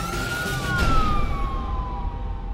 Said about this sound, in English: And within minutes, all of us were in cars with lights and sirens going 100 miles an hour, basically up there.